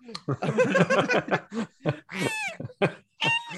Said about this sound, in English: Birds make bloody weird noises in this film. So they noise. Even like right din. DJ record scratches or cats. I thought it sounded like cats a lot.